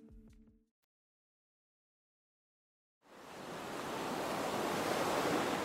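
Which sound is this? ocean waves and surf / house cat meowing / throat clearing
ocean waves and surf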